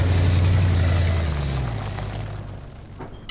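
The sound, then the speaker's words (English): A car engine rumbles low and steady, its drone gradually fading as the vehicle slowly cruises past and away, with no voices present. “You see that car cruise by like they were checking the place out?”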